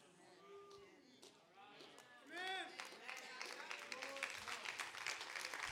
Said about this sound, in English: That ain't the thunderous a clap I thought I was going to get.